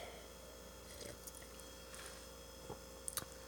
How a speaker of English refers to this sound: Okay, let me tell you. I just want one more sip. Maybe I was just prolonging things so I could have another sip.